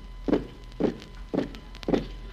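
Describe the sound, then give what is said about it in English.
Four heavy, evenly spaced footsteps tramp along at a steady marching pace as blindfolded prisoners are marched out to a courtyard at sunrise, each a dull low thud, with no voices in between. “The next morning, as the sun rose, they blindfolded us and marched us out to the courtyard.”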